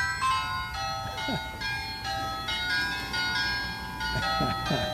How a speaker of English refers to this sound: And then when somebody rings the doorbell, instead of hearing like ding dong, you hear this.